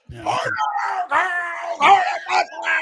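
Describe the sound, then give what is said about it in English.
A man yells in loud, strained, wordless bursts, mimicking an angry parent shouting from the stands, with brief breaks between several hoarse, rising cries. “So I'm trying to imagine in Minnesota, Rob Ray's in the stands, just absolutely yelling at like you just did there.”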